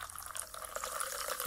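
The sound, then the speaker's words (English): Three ounces of tonic water pour steadily into a tall glass of ice and cranberry juice, a continuous splashing stream with a faint fizzy crackle, its tone rising slightly as the glass fills near the end. “Then, pour 3 ounces of tonic. So bubbly.”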